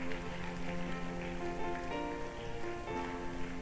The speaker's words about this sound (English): Clap for them too as they are coming. Clap for them too.